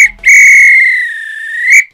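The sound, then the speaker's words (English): A referee's whistle gives one long, loud, shrill blast to signal the end of a match, holding a steady pitch for about a second and a half before cutting off, with nothing else around it. “This is when the ref blow the whistle because it's finished.”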